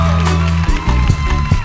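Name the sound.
audience applause and cheering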